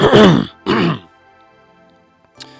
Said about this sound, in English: Clearing my throat dramatically, I say,